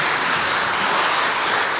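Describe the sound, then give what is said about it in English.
A crowd applauds young participants steadily, a dense wash of many hands clapping at once, loud and even for the whole stretch with no voices on top. “If you don't mind to just give them one more round of applause just for their participation.”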